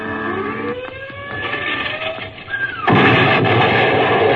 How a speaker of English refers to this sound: Bust those jellies with their rocket bombs.